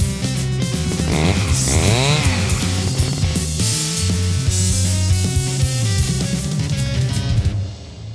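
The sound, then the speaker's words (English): A loud chainsaw sound effect roars continuously, its engine whining up and down in pitch with a couple of sharp revs early on, then cuts off abruptly near the end. “Gotta get some chainsaws up in this bitch.”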